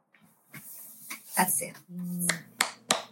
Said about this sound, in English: I applauded.